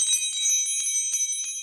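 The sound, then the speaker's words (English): A bright cluster of chimes rings out as a closing signal, several bell-like tones struck in quick succession and shimmering together, clear with no voices present. “Hey, did you hear those chimes?”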